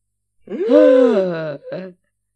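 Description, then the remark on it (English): A loud voice lets out a long, dramatic voiced gasp that rises and falls, then a second short gasp, imitating a shocked group gasping. “Everybody gasps.”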